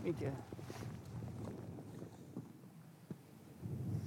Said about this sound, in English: Anyway, we must get onto the high ground now. Yes, it's getting windy, so...